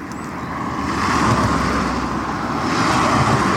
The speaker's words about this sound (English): You hear the traffic now. Lots of traffic. So even early on a Saturday morning, there's plenty of traffic.